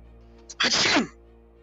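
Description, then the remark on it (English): A single sneeze, fairly loud, with a brief sharp intake just before the explosive burst that trails off in under half a second. “Bless you.”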